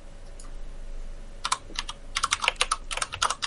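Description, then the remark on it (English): Rapid, irregular clacking of old typewriter keys, sharp bright taps coming in quick bursts after a brief quiet start, fairly loud with no voices. “Step on my old ass fucking typewriter. Clickety-clackety, bitches.”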